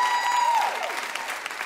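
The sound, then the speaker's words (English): Dense, steady applause from a large studio audience for Omari Hardwick and Naturi Naughton, guests from the show Power, fills the whole moment, a continuous wash of clapping with a brief tonal sweep fading out at the start. “Give it up one more time for Omari Hardwick Thank and Naturi Naughton.”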